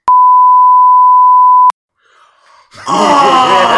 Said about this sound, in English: Oh! She listens to this podcast, you know. I will have to beep that.